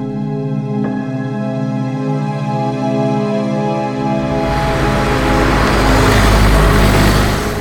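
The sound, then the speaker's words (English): A car engine drones steadily with a low, even hum, then a louder rushing road-and-wind noise swells in halfway through as the vehicle keeps moving. No one speaks. “That's because we're in a car that has trouble going downhill.”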